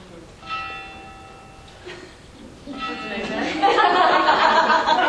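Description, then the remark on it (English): A church bell strikes once, its ringing tone lingering and slowly fading, with a second fainter stroke after. Then loud, overlapping voices and laughter swell up and bury it. “For whom the bell tolls. Tolls for me.”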